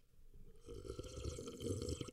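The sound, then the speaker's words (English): A quiet sip of water, then a long, rumbling burp that gurgles for well over a second. No one speaks. “I'm going to take some water before I become that person.”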